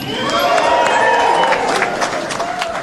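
A large crowd at an election-night event in Arkansas cheers and claps loudly and continuously, a dense roar of voices with sharp bursts of applause throughout, with no pauses.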